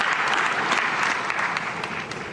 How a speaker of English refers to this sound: Oh, here comes the moment. Oh, clap, clap, clap.